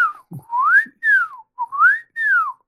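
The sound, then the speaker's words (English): A toy flute whistle, clenched tightly in one hand, blown back and forth, each breath sliding up in pitch then falling back down, repeating in a steady rising-falling pattern, clear with no talking. “a childish flute whistle clenched so tightly in one hand it might break at any minute. He goes back and forth with it.”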